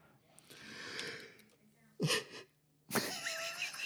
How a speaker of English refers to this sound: Oh, sorry, you caught me mid-yawn there.